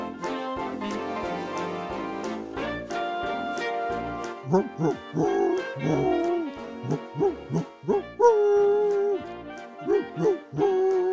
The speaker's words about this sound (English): I borrowed one of the singing dogs. Roof, roof.